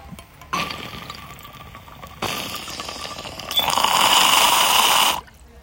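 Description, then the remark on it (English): Steady bubbling of water in a bong during a hit of lemon freeze pop, building in intensity over about five seconds, growing louder and more rushing toward the end before stopping abruptly. No one speaks. “Noticed lately sometimes that I don't be coughing from bong rips.”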